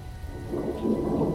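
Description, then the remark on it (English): A deep rumble of thunder rolls through steady rain at the Bastille, the low roar swelling in the second half while a constant hiss of falling water continues underneath. No one speaks. “I shivered, but maybe it was just the rain.”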